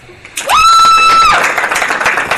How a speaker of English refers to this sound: We are clapping now.